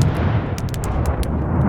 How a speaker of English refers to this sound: The barrel started simmering and cooking and heaving, and then all at once it exploded like a dozen cannons shooting themselves.